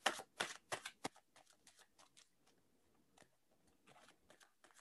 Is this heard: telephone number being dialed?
no